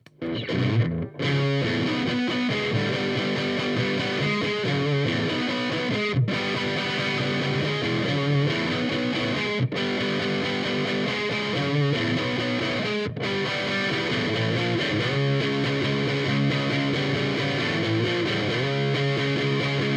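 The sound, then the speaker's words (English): An overdriven electric guitar plays a steady, dense riff of sustained chords and notes, loud and up close, with a crunchy gritty tone and a few brief pauses between phrases, no voices. “I use the channel they call Burn, which is basically like a Fender Ghost Marshall channel, you know.”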